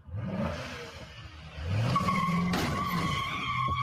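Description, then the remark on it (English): Car tires screech in a long, loud squeal over a revving engine as a driver rams other vehicles in a road rage incident in Los Angeles, recorded on a cell phone. A brief sharp bang comes partway through and the skid continues. No one speaks. “Captured on cell phone video by one of the victims who tried to stop that crazed driver from damaging more vehicles.”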